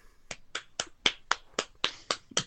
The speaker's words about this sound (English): Round of applause.